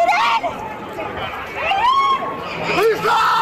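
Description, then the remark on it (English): A panicked crowd in full cry after an SUV drove into it, high frantic voices screaming and shouting over one another in waves, loud, with people screaming for their loved ones and a dense babble of distressed calls filling every moment. “Panic also caught on camera in the aftermath, lawn chairs and possessions left behind, people screaming for their loved ones.”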